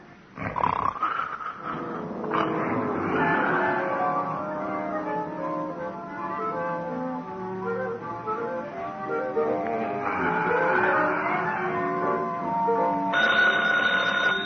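A telephone bell rings loudly, layered over other rough, tonal sounds that continue throughout, with no talking.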